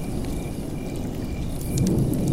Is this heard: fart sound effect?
no